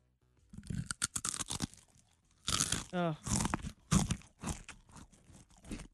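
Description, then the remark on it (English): Loud, sharp crunching of a Cheez-It cracker being chewed, a rapid series of crisp bursts in irregular clusters with short pauses between bites, and no one talking. “Oh, and that's one Cheez-It.”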